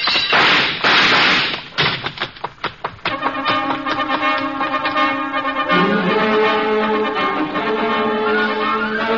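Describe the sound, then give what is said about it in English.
A lamp is knocked off a desk: a loud crash, followed by a burst of rattling, clattering impacts that fade out over a couple of seconds as sustained musical tones take over. “I managed to knock a lamp off his desk and beat it before he can find the range.”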